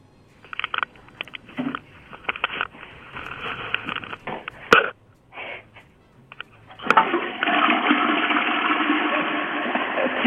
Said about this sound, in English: Wait, did you just flush the toilet? Are you just giggling because you just flushed the toilet on the air?